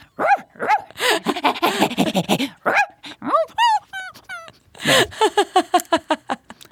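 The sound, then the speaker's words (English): A puppeteer imitates a dog, loud, with a burst of barks and yelps, a few whiny rising yips, then a quick rhythmic run of short barks. “I can generate a one-page resume of nothing but dog rolls.”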